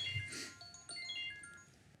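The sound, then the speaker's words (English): A phone ringtone chimes a quick melody of bright electronic tones stepping up and down, fairly quiet, with no talking over it. “See, there's my phone going off, which I'll have to silence it.”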